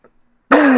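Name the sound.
sneeze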